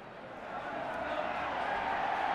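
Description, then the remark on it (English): An arena crowd roars in a dense, continuous wash of many voices, swelling steadily louder over a couple of seconds without any pause. “Oh, the crowd has come alive.”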